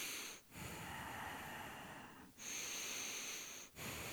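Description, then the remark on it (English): Someone deliberately imitates heavy breathing right into a microphone, long loud rasping breaths broken by a couple of brief pauses, harsh with no talking. “Just me breathing really heavy into my, you know what I mean?”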